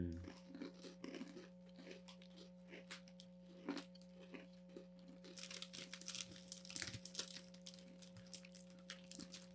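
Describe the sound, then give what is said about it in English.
Crisp crunching as someone bites and chews graham cracker snacks, irregular snaps growing busier and louder toward the end, over a steady low electrical hum. “Crunchy. I feel like I've had these before.”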